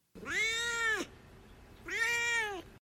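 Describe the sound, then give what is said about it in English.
A domestic cat named Duarte meows twice, each call long and drawn out with a rising then falling pitch, fairly loud, separated by a brief pause with no talking. “Let's move on now to Duarte's Corner, where my cat Duarte will give his opinions on the story.”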